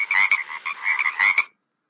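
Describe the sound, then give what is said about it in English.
Frogs croak in a quick run of loud, raspy calls lasting about a second and a half, with no talking, then the sound stops abruptly into silence; the slimy frogs are swimming in a backyard pool. “There were slimy frogs swimming around him.”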